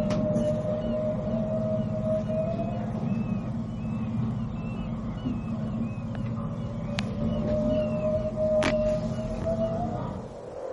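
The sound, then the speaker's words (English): Long, drawn-out whale song picked up by a boat's sonar moans and glides over a steady low engine rumble, with faint higher bird chirps drifting in and a couple of sharp clicks breaking through. “although we hear the birds quite clearly, they're chirping, they're singing, but the sonar here on the boat is also picking up the song of the whale.”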